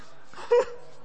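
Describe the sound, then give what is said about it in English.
An excited dog gives one short, high whining yelp, fairly loud, against a quiet background during a sermon. “It's a holy dog.”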